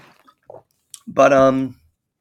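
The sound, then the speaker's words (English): Someone drinks water: a few soft sipping and swallowing clicks, then a satisfied voiced "ahh" about half a second long. “Excuse me, get some water real quick.”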